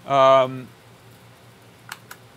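A brief hummed vocal sound, then quiet, followed by two quick, light computer keyboard key clicks close together near the end, as key combinations including command, shift, A, V and M are pressed during a keyboard checker test.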